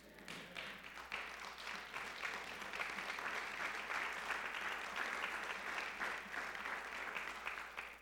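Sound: audience applauding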